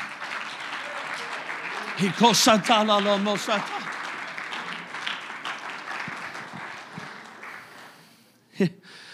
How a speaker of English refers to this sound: Oh, stand with me, everybody that's standing. Clap our hands unto the Lord. Come on, let's make a joyful noise unto the Lord.